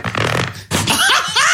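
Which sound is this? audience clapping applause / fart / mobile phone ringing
fart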